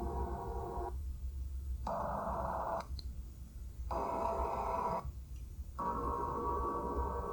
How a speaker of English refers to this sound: So this is from... God, I don't know what year this was. But they passed by Jupiter, too, and Jupiter also made a sound.